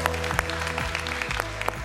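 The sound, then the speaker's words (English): A pastor claps his own hands for himself about eight times on Father's Day at a church service, at an uneven, unhurried pace, each sharp smack standing out over a steady low tonal hum in the background. “I'm clapping for myself, so that feels weird.”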